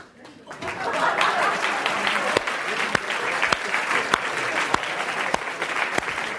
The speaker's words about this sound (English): But first of all, if you guess the song right, can you stand up, please, for a round of applause and stay standing?